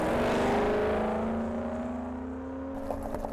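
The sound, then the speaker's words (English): A car engine revs hard and pulls away from a parking lot, its steady harmonic drone gliding slowly upward in pitch as it accelerates, loud and continuous with no voices, then thins out with a few clicks at the end. “After her last class on Monday, Percy ran to the parking lot and zoomed directly to Fort Knox.”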